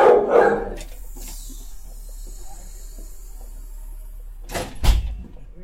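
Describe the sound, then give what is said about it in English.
A small adopted dog named Bob lets out a sharp, high bark at the start, then after a few seconds of quiet hiss, gives a couple more quick yaps. “You think you're a 30-pound dog.”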